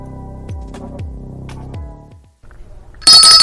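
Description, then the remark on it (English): A telephone rings repeatedly in a steady electronic pattern, each ring pulsing about every half second, then cuts off into a loud burst of harsh noise. “So what did you do that the phone kept ringing over and over again?”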